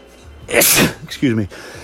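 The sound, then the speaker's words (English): A single loud sneeze bursts out sharply, followed by a brief voiced sound as a person speaks right after it. “Excuse me, sneeze on the truth.”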